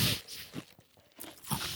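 Ice being chewed: a few sharp, crackly crunches in irregular bursts, with quieter gaps between bites, fairly loud and with no talking.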